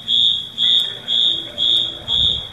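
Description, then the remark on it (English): A shrill electronic alarm goes off in a hotel room at a Holiday Inn Express after a fire hose extinguisher fell off the wall, beeping in a steady repeating pattern: five long high-pitched tones about half a second each with short gaps, loud, with no voices. “Why is this alarm going off?”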